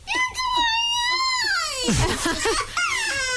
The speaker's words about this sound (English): Don't cry, bub. I mean, he's 4 years old. He would cry like that every time I blocked him, but I kept doing it.